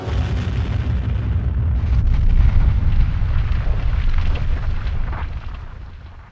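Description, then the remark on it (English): Powerful detonations of electrostatic shield towers in the north and east sectors of a city roar in a continuous, deep rumbling wall of sound, loud, swelling midway before slowly fading at the end, with no voices. “Axel, Gela said, as the electrostatic shield towers in the north and east sectors detonated.”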